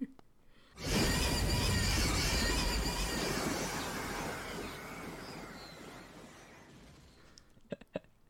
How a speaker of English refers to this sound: And then we roller coaster to the new planet. Whoosh.